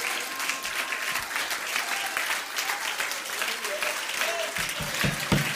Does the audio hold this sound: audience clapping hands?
yes